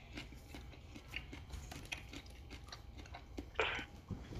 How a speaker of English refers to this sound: What's fucked up is that I'm looking at the phone that I'm using to record, and I'm watching the bars move up, and that means that my chewing is definitely coming out in this recording.